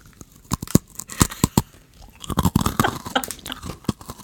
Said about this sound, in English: I actually have Oreos right now, so I have Oreos. Oh man, Oreos. Hey guys, we're gonna do a test for ASMR. You're gonna see the crunch.